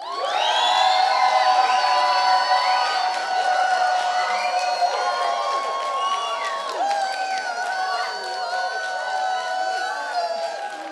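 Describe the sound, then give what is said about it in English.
A crowd of children cheers loudly for about eleven seconds to vote for a contestant as the winner, many high voices whooping and shrieking together over scattered clapping, holding a steady intensity before tapering slightly at the end. “Okay, was that a good round of applause?”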